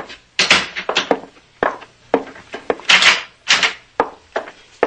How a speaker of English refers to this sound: Close the door.